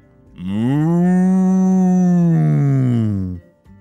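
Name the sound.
cow mooing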